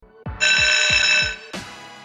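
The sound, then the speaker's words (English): A loud, harsh buzzer blares steadily for about a second over a few thudding low beats, then cuts off with a sharp crash-like hit. No one speaks. “Well, you bloody heard it. The buzzer's gone and you know what time it is.”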